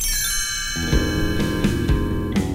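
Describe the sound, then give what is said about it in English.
A quick run of bright chimes used as a cue to turn the page: several struck notes in succession that ring on and overlap into a shimmering sustained tone, clear with no voices. “You will know it is time to turn the page when you hear the chimes ring like this.”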